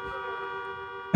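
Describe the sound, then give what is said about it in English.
Car horns blare in one long, unbroken honk with steady, brassy overlapping tones, then a sudden loud thump cuts in at the very end. No one speaks. “All those fucking horns.”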